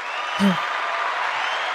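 Steady, dense applause fills the whole stretch, a continuous crackling wash of many hands clapping at an even level, with a brief low hum-like tone briefly surfacing near the start.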